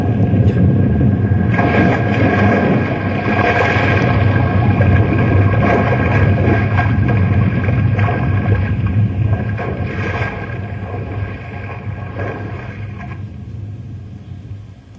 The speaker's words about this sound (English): This here iceberg is cracking in two.